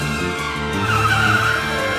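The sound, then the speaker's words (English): A loud, sustained tire screech with a whining, slightly rising squeal over a rumbling engine, like a car skidding hard in a chase; no voices. “Shows with lots of car chases in them.”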